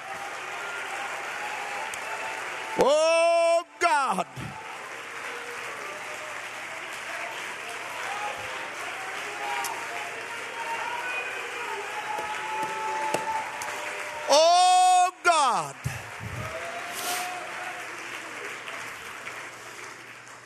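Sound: audience clapping hands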